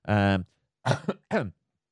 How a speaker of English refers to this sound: bit of a cough there.